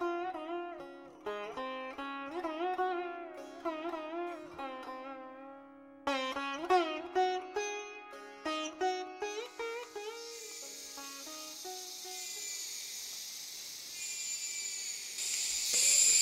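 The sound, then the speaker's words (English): A tuneful, wavering melody gives way to a dense, steady high-pitched buzzing drone as a chorus of cicadas swells and holds loud through the second half, growing stronger at the end. “That's a cicada. Actually, it's a chorus of cicadas.”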